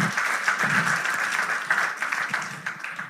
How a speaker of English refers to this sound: Oh, you guys are funny. We should clap for the word of the Lord, I'd say. Yeah.